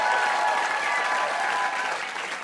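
Steady audience applause, a dense wash of many hands clapping at once, loud and sustained throughout before easing off slightly at the very end.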